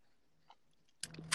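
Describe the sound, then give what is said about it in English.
A short sip of Bel Air liquor: a moment of near silence, then a quick burst of wet, airy slurping noises that end abruptly. No one speaks. “AKA, he needs time to sip.”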